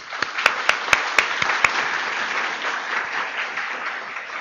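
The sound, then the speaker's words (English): An audience applauds the staff who put the event together, with dense continuous clapping and a few sharp, louder claps standing out near the start before the applause settles into an even wash. “And I want to say thank you and have a round of applause for our staff.”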